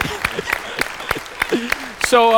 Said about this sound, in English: So at the count of three, let's all just give a round of applause to